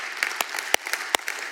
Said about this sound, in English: Don't clap for confusion. Save the clapping for later on, all right? Save the clapping,